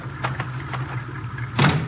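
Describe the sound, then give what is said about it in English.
Garage doors being opened: a few short rattling clanks over a steady low mechanical hum, then a louder scraping clunk near the end, with no talking. “I'll open the garage doors.”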